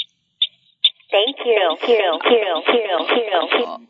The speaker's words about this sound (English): We got a little echo, Jamie, of your computer.